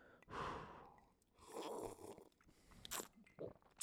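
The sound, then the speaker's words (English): Quiet slurping sips of whiskey, followed by breathy exhales and soft mouth sounds, ending with a sharp little click. “I'm sipping all the whiskey.”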